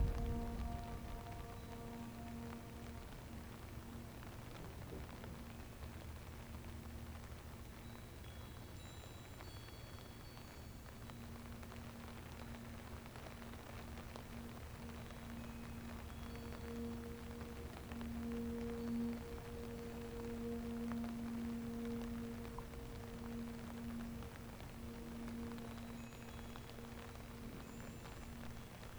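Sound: rain falling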